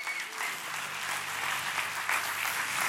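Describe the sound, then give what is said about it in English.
A standing crowd gives the Lord a hand clap as a service closes, a dense wash of many hands striking at once, sustained and fairly loud for a few seconds, with no voices standing out. “Give the Lord a hand clap if you could.”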